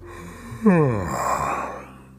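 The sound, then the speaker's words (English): A person acts out a single drawn-out yawn, as an old wolf pretending to be sleepy, opening with a voiced sound that slides downward into a long breathy exhale, fairly loud, with no other talking. “Soon the old wolf pretended to be sleepy. He yawned.”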